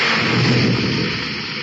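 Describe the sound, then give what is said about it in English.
The central electrical control panel of a crime trap alarm system blowing up after a short circuit, smoke pouring out: a loud, rumbling burst of crackling, roaring noise that holds for under two seconds and eases off only slightly at the end. No voices. “Smoking rockets, the central panel blew up. Every circuit's dead.”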